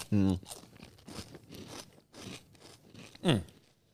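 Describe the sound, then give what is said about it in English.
Someone bites into and chews crispy cornflake cookies that are a couple of days old, a steady run of dry crunches about every half second, with a couple of short voiced murmurs at the start and near the end. “You can't tell me these cornflake cookies aren't made with love”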